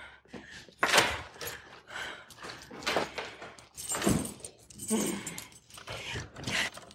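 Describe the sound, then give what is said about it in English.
A set of keys for opening a cash drawer jangles and clinks in short bursts over several seconds, mixed with scraping and handling noises and an occasional breathy vocal sound. “I need the keys.”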